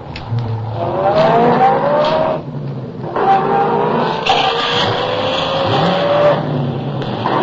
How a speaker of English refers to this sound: The chase was on. I pushed the accelerator to the floor and drove for all I was worth.